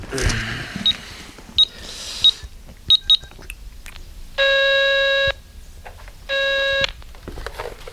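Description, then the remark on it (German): A quick series of short electronic dialing beeps as a call is placed with a phone card, then two longer steady ringing tones on the line with a pause between them, clear, over faint background noise. “können wir doch wenigstens mal anrufen und fragen, oder?”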